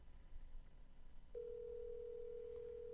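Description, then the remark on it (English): A steady, single-pitched telephone ringing tone starts about halfway through and holds unbroken to the end, fairly clear over a low background rumble, with no one speaking, as a phone call waits to be answered. “He's not going to answer.”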